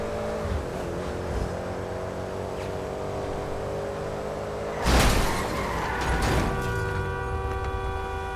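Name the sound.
video game car driving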